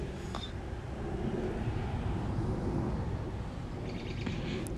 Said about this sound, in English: I'm hoping that the bird chirping, car sounds, will make it a little more atmospheric. Like, here's a car coming right now.